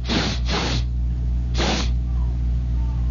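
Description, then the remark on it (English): Three sharp, breathy sniffs in through the nose: two in quick succession, then a third after a pause, over a steady low hum with no talking. “I'm sniffing the air.”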